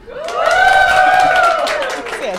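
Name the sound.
audience cheering and applause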